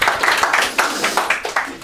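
Audience applause: a steady patter of hand claps at a quick, fairly even rhythm, moderately loud and continuing throughout without letting up.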